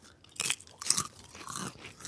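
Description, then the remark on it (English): Loud, close-up crunching of chips, with several sharp, crackly bites and chews in quick succession right against the microphone, and no talking. “I'm always chewing right into the mic, listeners, so if you have any vitriol, I think it's funny.”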